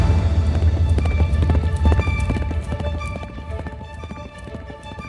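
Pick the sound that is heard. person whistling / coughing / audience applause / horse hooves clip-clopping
horse hooves clip-clopping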